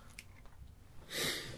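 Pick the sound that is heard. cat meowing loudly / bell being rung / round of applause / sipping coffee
sipping coffee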